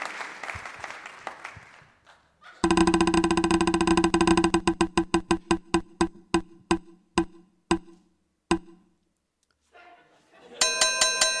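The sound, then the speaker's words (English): A prize wheel spins with a rapid burst of loud clicks that gradually slow, spacing out into separate ticks before stopping, followed by a short chime. “Let's spin it again.”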